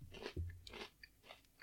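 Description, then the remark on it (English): Crunching of a cinnamon-flavor creme Oreo cookie with crunchy sugar crystals being chewed, several crisp, gritty bursts in an uneven rhythm with small clicks between them, fairly quiet, no talking. “I hear the crunch.”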